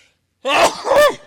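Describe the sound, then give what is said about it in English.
A single loud human sneeze: a sharp voiced intake burst followed by a forceful, breathy release, with no talking around it. “What am I sneezing?”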